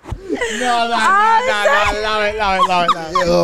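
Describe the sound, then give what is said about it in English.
A continuous series of high, wavering whimpers and whines, like a dog, most likely a human voice imitating it, with pitch sliding up and down for a few seconds. “That was not your dog.”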